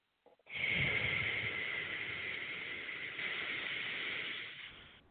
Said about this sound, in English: And sometimes it helps to make the sound, you know, the exhale.